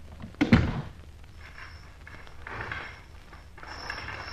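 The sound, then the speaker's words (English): A door shuts with a single solid thud, followed by a few seconds of soft rustling and swishing as heavy drapes are drawn over a window. No one speaks. “Pull those heavy drapes over the window, there's a good girl, while I shut the door.”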